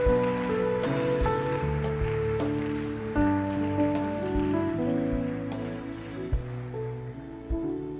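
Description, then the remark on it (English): An audience at a morning church service claps hands in a dense, steady patter that blends with loud church music, with sustained keyboard chords and a deep bass line. No one speaks. “Put your hands together this morning.”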